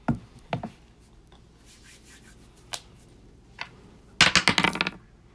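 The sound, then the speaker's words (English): A few scattered hard clicks and taps, then a sharp burst of rapid clattering as a single die, rolled to decide who goes first, tumbles and bounces across a table before settling. No one speaks. “Just one or two dice? One dice. You gotta beat his 15 to go first.”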